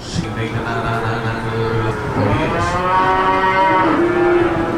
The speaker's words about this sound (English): Lots of cows in here. A lot of cows. Are these ones that have already been through the auction? No, these are fixing to be sold in just a little bit.